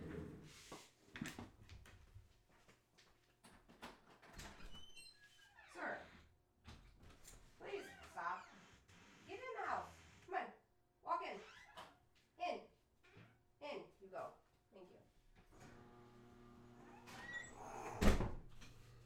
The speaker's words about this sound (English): something is trying to get into my office. Hold on, is it a cat?